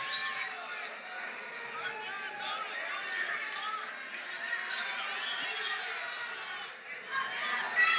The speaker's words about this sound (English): Hear all that cheering in the background? That's actually because they're so excited to pay more taxes on a wall.